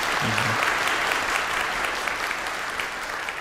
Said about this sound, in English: Well, you've given us a lot of help. Let's have a nice round of applause for Phil Blair.